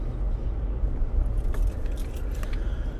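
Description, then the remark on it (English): A steady low road rumble fills a truck cab while driving around, recorded with a microphone in the truck, with brief light rattling and jingling midway and no voices. “And the only reason that I'm driving around right now is because I haven't gotten my studio completely fucking set up right.”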